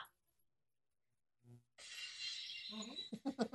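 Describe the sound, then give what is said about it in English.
After near-silence and a brief low thump, glass suddenly shatters loudly, a bright crashing burst with scattered debris that gives way to a few short, punchy tonal hits. “I'm trying to find the Stone Cold Steve Austin glass.”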